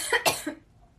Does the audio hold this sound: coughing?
yes